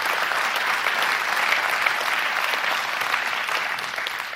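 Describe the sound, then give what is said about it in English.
A crowd applauds steadily for several seconds for a couple married 50 years, dense clapping from many hands at a loud, even level without pause. “Don't just clap.”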